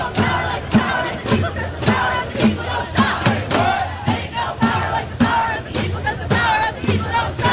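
A large crowd of global climate strike protesters chants in unison, loud rhythmic shouted phrases repeating with a steady beat, many voices blending into a roaring, continuous protest chant.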